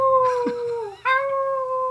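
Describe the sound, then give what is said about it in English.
A loud wolf-like howl from a werewolf character holds a steady, harmonic-rich tone, sags and briefly breaks near the middle, then swells back into a second sustained cry with no talking. “And with that, Mr. Wolfer inside began howling.”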